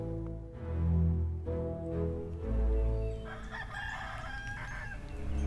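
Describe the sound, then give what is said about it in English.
A rooster crows loudly, a drawn-out cock-a-doodle-doo with harmonic rises and falls, followed by a brief burst of higher, raspier calls near the end. “Gawain was up at the first crow of the rooster.”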